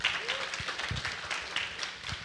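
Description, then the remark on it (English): An audience at Cedar Valley claps steadily before a sermon, in a dense, continuous patter of many hands, fairly loud throughout, with faint voices mixed in underneath. “We're starting with applause before the message.”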